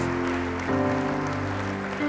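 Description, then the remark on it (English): An audience gives a hand clap of praise in a steady, dense wash of applause, layered over sustained keyboard or organ chords that shift pitch twice, with no voices on top. “Come on, let's give him a hand clap of praise in this house.”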